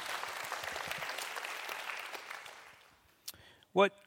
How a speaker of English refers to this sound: Oh, we want to clap. All right.